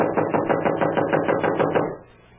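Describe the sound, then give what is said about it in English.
A rapid, steady run of about a dozen knuckle knocks on a wooden door, knocking again because the doorbell is not working, fairly loud, then silence after about two seconds. No one speaks. “I'm wearing out my knuckles on this door. Well, try the bell. I did. Not working as usual in these places. Well, knock again.”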